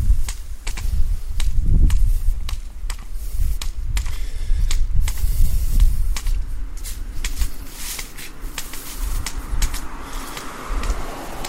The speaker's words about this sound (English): Hopefully the wind does not make too much background noise, as it's very windy today. I do have a wind shield over the top of the recorder, but I don't know, it's pretty windy.